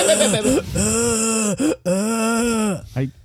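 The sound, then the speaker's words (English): A voice imitates the exaggerated, breathy way actress Shailene Woodley breathes: two long, airy, voiced breaths with a short catch between them and a quick final gasp, loud. “Yeah, that's how she breathes.”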